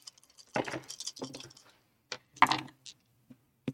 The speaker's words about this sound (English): I rolled a lot of dice.